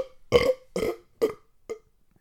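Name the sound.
burp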